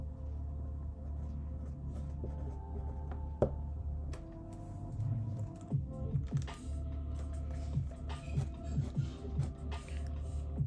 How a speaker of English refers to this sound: There's the pencil again.